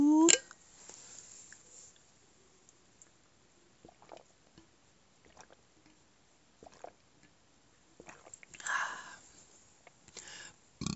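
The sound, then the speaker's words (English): Someone quietly sipping water: a few soft, wet slurps and swallowing clicks spaced out over several seconds, with a slightly louder gulp toward the end and no talking. “I'm gonna take a little sip of water real quick.”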